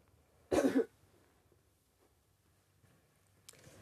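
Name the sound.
coughing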